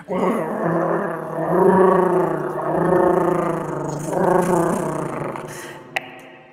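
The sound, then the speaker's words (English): A voice imitates a giant cat's purr: a low, rumbling, throaty drone held for about six seconds, swelling and easing in slow waves, with a small click near the end. “We got the purring part.”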